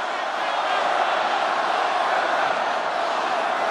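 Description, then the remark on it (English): A large crowd chants and yells "Lock her up" together in a loud, steady roar of many voices, filling the space continuously without pause for a few seconds. “The crowd starts yelling, "Lock her up."”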